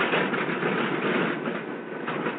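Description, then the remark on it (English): An aircraft engine, engine number one of a plane, is started up and roars steadily, a dense, continuous mechanical drone with no pauses and no voices. “The same routine is followed for each engine. Clear to start 1.”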